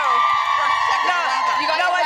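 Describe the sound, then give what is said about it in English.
A big studio crowd cheers and whoops loudly and continuously for Dylan Dreyer, many overlapping high-pitched voices blending into one steady roar with no pause. “Oh, we got a big crowd for you, Dylan Dreyer.”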